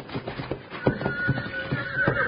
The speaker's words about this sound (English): He's got that horse so spooked up, it doesn't know what it's doing.